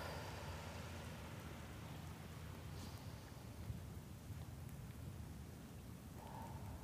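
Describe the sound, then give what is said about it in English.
Soft, steady crackling from the wick of a burning magnolia-scented candle, a dense stream of faint irregular pops and ticks with no voices, sounding almost like light rain. “So if you're hearing crackling in the background, that is the candle because it is amazing and it crackles.”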